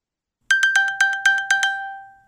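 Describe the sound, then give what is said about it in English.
A smartphone's find-my-phone alert tone, set off by clicking once and pressing a button, plays a quick, rhythmic run of about eight bright, metallic pings over two steady pitches, then rings out and fades. No one speaks. “But my smartphone has a function where if I click it once and then I hit this little button and...”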